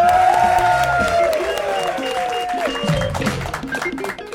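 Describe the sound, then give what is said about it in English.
Studio audience applause and cheering on the show Glory Hunters, a steady, loud wash of clapping for about four seconds with shrill whoops and whistle-like tones rising above it, fading slightly toward the end. “Yes, the crowd went mild.”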